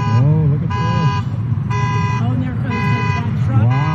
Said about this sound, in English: Meanwhile, this is some of what locals saw and heard in the Santa Cruz area. There's cars floating in the parking lot. Horns going off.